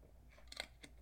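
Someone sips a Monster energy drink from a can: a few short slurping and clicking bursts, fairly quiet, with no talking.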